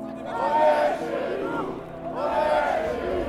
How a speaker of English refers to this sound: A chant of, "This is our home," starts elsewhere in the crowd and picks up in volume. Then it's, "Get on the plane."